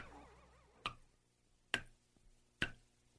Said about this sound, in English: What does this sound mean to you? Could be a leaky faucet, but dig a bit deeper. Think of a water droplet separated from its source, isolated, dripping into an empty bowl, displaced, apart from the whole.